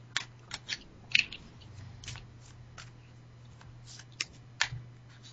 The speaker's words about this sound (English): Okay. Let me shuffle a little. Just do an overhand here. Yeah, I'm just kind of goofing around with my little overhand shuffle.